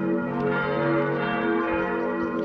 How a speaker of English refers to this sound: And all of a sudden, in our church, which we had in our city, we could use the bells, you know, the bells when the mass was about to start. Usually you hear bells.